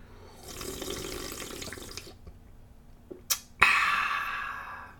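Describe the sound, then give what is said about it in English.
Someone sips V8 from a freshly opened can: a soft slurping rush of liquid, a brief pause, a couple of small metallic clicks, then a sharp tap and a hissy sip that slowly fades. No talking. “First sip.”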